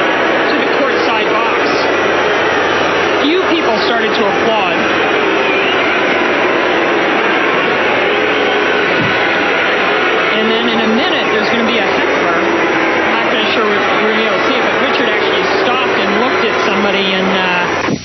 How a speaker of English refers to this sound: I've never seen anything like this at a tennis match. Neither have I. It's pretty amazing. It's incredible that the crowd booed for so long.